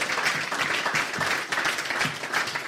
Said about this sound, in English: He's got to get a clap for that, surely.